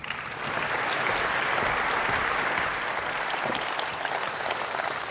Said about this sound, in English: Thank you. People don't normally applaud when I come to the pulpit, so thank you for that.